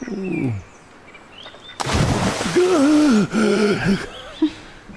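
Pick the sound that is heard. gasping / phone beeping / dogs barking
gasping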